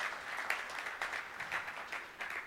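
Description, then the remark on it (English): An audience breaks into steady applause for volunteers coming to the stage, many hands clapping in a dense, crackling wash that holds at an even, moderate level throughout, with no voices rising above it. “Can we give them a round of applause, please, guys?”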